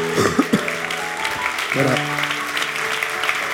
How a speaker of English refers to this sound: Come on, clap your hands. Give God a shout of praise.